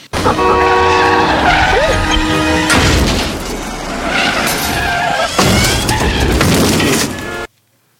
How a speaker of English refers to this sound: he gets blocked between all the cars crashing